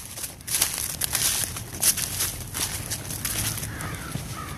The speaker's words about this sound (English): I walked across the lawn. Was still covered in leaves from the fall before, and they crunched under my feet.